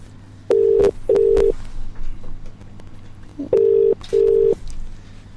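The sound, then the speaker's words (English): Two double-burst ringback tones, the steady buzzing pattern of an outgoing phone call to a dental clinic ringing out on the line, with a pause between the pairs over a low background hum. “Here we go, it's ringing.”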